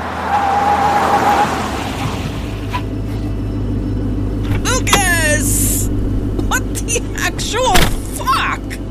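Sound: car engine rumbling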